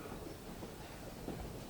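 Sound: train moving along rails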